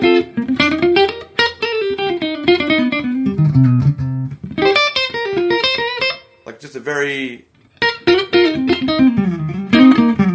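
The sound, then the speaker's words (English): A clean electric guitar plays through a Jazz Rivet 120 amp model in a Helix, into an Own Hammer impulse response, ringing melodic lines and chords at a steady level, with a short pause where a voice briefly speaks before the playing resumes. “Basically, it's the Jazz Rivet 120. I didn't really mess with it that much. Into my favorite Own Hammer Impulse Response.”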